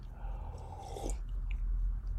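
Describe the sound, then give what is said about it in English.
A wet slurp of a drink, one short sucking pull with a rising whistle-like sweep, over a steady low hum with no talking. “Let me take a slurp.”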